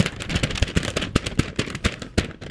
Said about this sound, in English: This requires special paper crinkling today because it's troublesome.